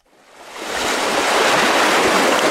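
Steady roaring ocean surf mixed with gusting wind on top of an ocean bluff where archaeologists are doing an emergency excavation, fading in over the first second and then holding loud and continuous, with a broad hiss and no voices.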